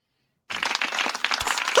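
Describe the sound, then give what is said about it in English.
Audience clapping breaks out abruptly after a brief silence: a dense, steady patter of many hands, fairly loud and sustained to the end, with no voices over it. “Oh, different clapping.”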